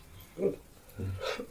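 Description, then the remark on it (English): A single sneeze: a brief breathy intake, then a sharp, hissy burst that cuts off quickly, with no talking around it. “Bless you. Bless me.”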